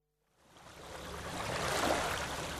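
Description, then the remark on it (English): Waves wash onto Hole in the Wall or Borough Beach, the rushing surf fading in after a brief silence and swelling into a steady, broad roar that holds to the end. No one speaks. “So we're on the beautiful hole in the wall or Borough Beach.”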